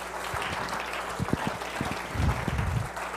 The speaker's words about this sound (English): Let's give the Lord a good hand clap if you believe that.